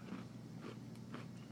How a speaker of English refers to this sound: It's not bad. You have to chew into the microphone